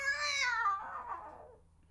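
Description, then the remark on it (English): A neighbour's cat gives a single drawn-out meow, starting high and sliding down in pitch before trailing off into a raspy, breathy end, heard fairly clearly over a faint low hum. “No, that's next door's cat.”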